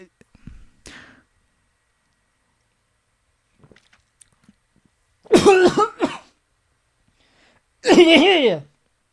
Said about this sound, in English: Yeah, I have a very weird sounding cough. I've never heard myself cough before in this voice, in this character.